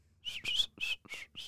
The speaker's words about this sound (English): Like I whistle.